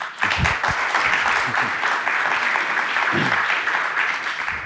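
Sustained applause from a conference session audience welcoming author Ben Reiter, a dense, steady wash of many hands clapping at an even loudness for several seconds, with a brief burst of voices near the start.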